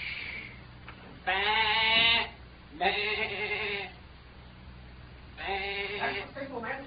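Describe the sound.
A person imitates a sheep as a signal, giving three drawn-out, wavering bleats with short pauses between them, over a faint low background hum.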